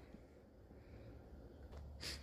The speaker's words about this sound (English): Can you stop sniffing at me? Sorry, sorry.